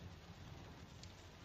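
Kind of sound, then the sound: nature, rain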